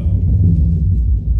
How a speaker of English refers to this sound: And that's a train.